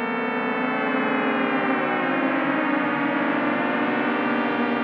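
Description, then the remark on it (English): Two buzzy synthesized tones overlap in a steady, sustained drone, their rich harmonics subtly wavering and beating against each other at an even, moderate loudness with no voices. “And here's a couple of them together. You can start to see how this could all add up into a gentle, teeming cluster of tones.”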